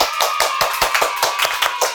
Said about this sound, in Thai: ตบมือค่ะทุกคน